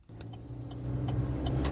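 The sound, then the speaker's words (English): A car engine hums steadily from inside the vehicle as it winds up a hill overlooking Waimarama Beach on the east coast of Hawke's Bay, its low drone growing slightly louder and straining as it climbs, with a few faint clicks and rattles over the top and no talking. “I'm in the car with Richard Gaddam, winding our way up the hill”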